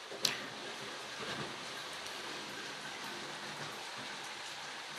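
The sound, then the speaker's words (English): Steady rain falls in a continuous, dense hiss, with a sharp drip or tap near the start and faint scattered patters throughout. No voices are heard. “While you guys hear the rain, I'm gonna play this track.”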